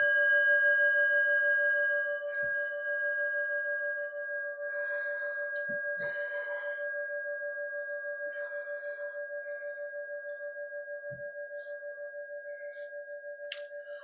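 A meditation bell rings once and its steady, layered tone hums on for the whole stretch, fading very slowly, with a few soft rustles and faint clicks beneath it.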